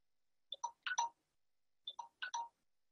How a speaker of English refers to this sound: My timer's going off.